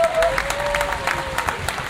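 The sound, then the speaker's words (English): Audience applause: a steady wash of many hands clapping at a moderate level, dense and continuous for the full two seconds, with a faint sustained tone running underneath. “Give her a hand.”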